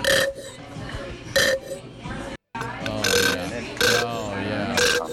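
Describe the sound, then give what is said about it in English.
Someone imitates an empty squeezable mustard bottle being drained onto a hot dog with wet, sputtering mouth noises: a run of loud, raspy, burp-like splutters with sharp bursts coming at uneven intervals and a brief pause midway. “Your mustard thing is going to be empty, and you're just going to get that.”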